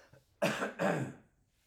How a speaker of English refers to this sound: I'm going to cough. Hang on.